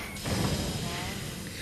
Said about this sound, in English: A door is opening.